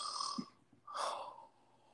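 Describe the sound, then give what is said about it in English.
A voice imitates a person snoring, making two rasping, breathy snores: a short inhaled snort followed by a longer, louder one, with no talking. “But you know, little people can snore too,”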